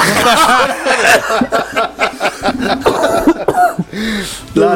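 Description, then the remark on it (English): A fit of loud coughing, several sharp bursts in an uneven run, mixed with breathy chuckles and voiced sounds between them. “Oh my God, that's the first cough I managed to hold that in for the whole episode.”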